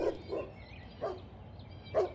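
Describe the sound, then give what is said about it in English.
A dog barks four times in an uneven rhythm, short sharp yaps at a moderately quiet level against a low background rumble, the barking coming from the woods. “Is that a dog barking?”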